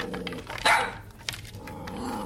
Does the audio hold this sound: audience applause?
no